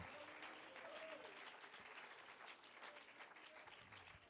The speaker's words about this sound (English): In the name of Jesus. If you'd clap your hands for Jesus one more time. Amen and amen and amen.